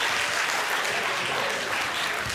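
Steady, dense audience applause fills the whole stretch, a loud continuous wash of many hands clapping with no voices standing out.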